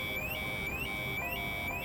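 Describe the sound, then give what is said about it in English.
A "cult alarm" sound effect: a bright electronic tone that sweeps upward in a quick, steady cycle, repeating about twice a second at an even, moderate volume, with no voices. “Fine, fine, okay, cult alarm, fine!”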